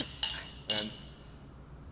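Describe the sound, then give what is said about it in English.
Glasses of Cheeky Blonde beer clink together twice in a toast, two bright taps about half a second apart, each leaving a short ringing tail that fades over a quiet background. “Yeah, cheers.”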